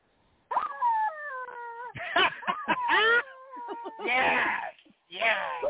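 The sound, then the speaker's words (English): A toy chicken lets out a series of loud, drawn-out squawks and wails, with wavering pitch, some short honking bursts in between and a raspier squawk near the end. Nobody speaks. “I want to hear the chicken. You want to hear the chicken again?”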